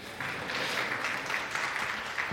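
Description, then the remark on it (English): A short burst of audience applause, dense steady clapping from a crowd at moderate volume, holding evenly for a couple of seconds with no voices over it. “Round of applause, quick.”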